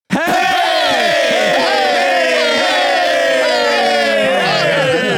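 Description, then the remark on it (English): A large crowd shouts "hey" together in one loud, sustained yell, many voices blending into a single roar that holds for about five seconds, its pitch sliding slowly downward. “That might be the best hey we've ever got.”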